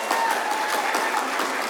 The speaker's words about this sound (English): If you guys would give them a round of applause, they have decided to place membership with us